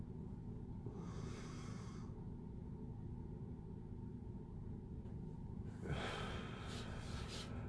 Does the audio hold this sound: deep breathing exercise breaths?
yes